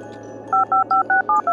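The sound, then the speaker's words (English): Six quick touch-tone beeps from the keypad of a borrowed jingle phone being dialed to call Scrooge, evenly spaced and clear, following a brief moment of quiet background hum. “Do you have a jingle phone I can borrow?”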